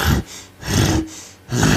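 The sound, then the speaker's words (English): A voice imitates a bear with three loud, breathy huffing growls, evenly spaced with short pauses between them, rough and low with a hissing edge, and no other talk. “And then I heard, like, you guys know what, like, a bear sounds like? It's like.”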